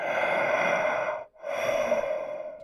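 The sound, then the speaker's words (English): Heavy, drawn-out breathing attributed to the masked killer Michael Myers as guest host: one long, loud rasping breath, a brief pause, then a second equally long breath, with no talking. “I think that's nodding, or maybe he's breathing really heavy.”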